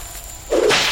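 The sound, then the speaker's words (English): A single whip lashes through the air with a quick, loud swish that starts abruptly after a quiet moment and sustains briefly, sharp, with no voices. “I concentrated my pale field around my left forearm, letting the whip wrap around it with minimal effect.”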